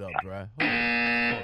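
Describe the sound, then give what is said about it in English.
A short burst of voice gives way to a loud, steady electric buzzer that drones harshly at one pitch for about a second before stopping. “I gotta get the buzz.”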